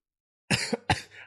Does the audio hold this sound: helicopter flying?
no